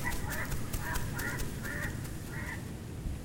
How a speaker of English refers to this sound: the rustle up above as wind whistles through the canopy, the crows, chirps and pitter-patter of unknown creatures lurking just out of sight